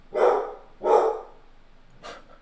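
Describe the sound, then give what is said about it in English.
A dog barks at the mailman, twice in quick succession and loud, followed by a shorter, fainter third bark. No one speaks over the barking. “The mailman must be here. Bailey!”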